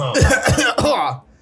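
A person coughs on the microphone: three quick, harsh, loud bursts in a row, ending abruptly into near silence.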